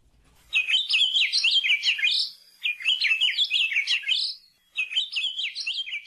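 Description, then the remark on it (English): An Akiapolaau, a large, bright yellow honeycreeper that acts like a woodpecker, sings in three bright, rapid warbling bursts, each about two seconds long with brief pauses between, clear, with no other sounds. “Kia Pololū are large, bright yellow honeycreepers that act like woodpeckers.”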